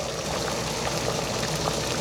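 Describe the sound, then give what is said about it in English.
Hot pot broth boiling with lamb, vegetables, tofu and noodles in it, a steady, dense bubbling with small pops and gurgles scattered throughout, holding an even loudness for the whole stretch with no voices. “I love the boiling sound of the hot pot.”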